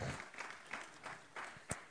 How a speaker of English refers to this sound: All of this is proved by one thing, the belief in what the Bible says, the resurrection of Jesus Christ. You can clap for that.